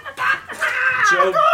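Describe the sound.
A person loudly imitates a rooster crowing: a short squawk, a brief pause, then a long strained, wavering crow that rises and falls in pitch.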